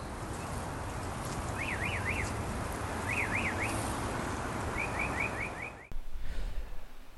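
A mockingbird imitates a car alarm with rising-and-falling warbled whoops in two short bursts, then a quick run of sharp chirps, all over a steady rush of background noise, with no voices.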